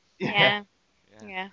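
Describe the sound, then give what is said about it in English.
A single loud, voiced sneeze bursts out sharply, and after a short pause a softer, tonal vocal sound follows. “Bless you.”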